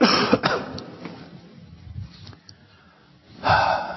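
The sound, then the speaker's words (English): A person coughs: a sharp burst at the start, a quieter stretch of breathing and throat noise, then another harsh cough near the end. “I have to cough, sorry.”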